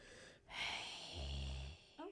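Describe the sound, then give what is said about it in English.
A voice imitates Darth Vader's deep, mechanical respirator breathing: a long hissing inhale followed by a low, rumbling exhale, then the start of a voice at the end. “That's the breathing. I'm not to the light yet. He does deep breathing.”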